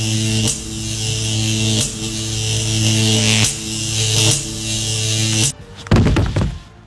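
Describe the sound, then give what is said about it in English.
A loud, harsh electric shock buzzing drones steadily, surging in several pulses, then cuts off abruptly into a burst of crackling thumps and snaps, giving off smoke. “Did you adjust the voltage from what the trainer used on 1,000-pound thoroughbreds?”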